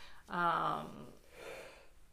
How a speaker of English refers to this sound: And oh my God, that was such a big yawn. That was such a big yawn. Big yawn.